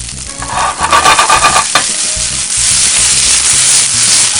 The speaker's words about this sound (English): What you want to hear? You want to hear that sizzle? Man, that looks fantastic already.